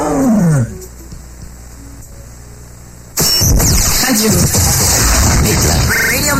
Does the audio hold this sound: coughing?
no